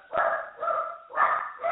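dogs barking loudly

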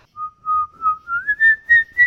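person whistling a tune

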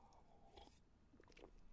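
sipping water

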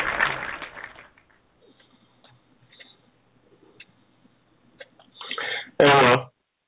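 man clearing his throat

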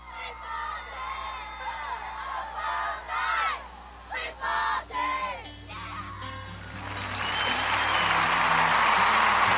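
crowd cheering

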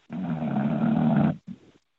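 snoring

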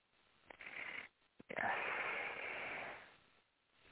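slow deep breathing

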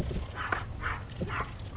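dog barking

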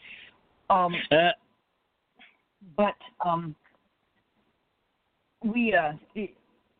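husky dog vocalizing

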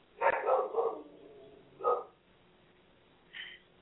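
dogs barking

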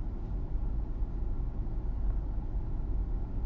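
car interior road noise

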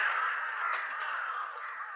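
crows cawing

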